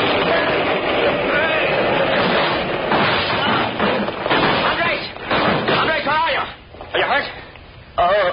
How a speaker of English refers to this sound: He picked it up and jerked. There was a deafening explosion, and the whole wall rose up and toppled in upon them.